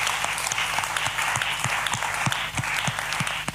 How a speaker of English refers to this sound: Clap the Lord for just a minute.